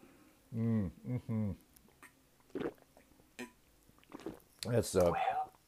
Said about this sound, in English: excuse me, I need a little sip of water here.